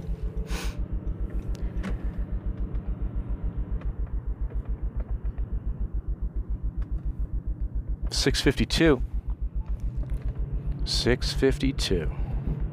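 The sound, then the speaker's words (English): A steady, low droning rumble from inside a car accelerating up to highway speed on the Catoctin Mountain Highway at 38 degrees, continuous throughout, with a couple of brief louder whooshing swells partway through. “As I make my way up to highway speeds, let me get this sucker thrown into cruise control here.”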